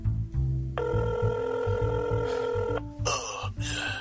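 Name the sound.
telephone ringing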